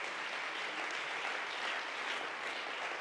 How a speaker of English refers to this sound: Can we clap our hands and give the Lord praise?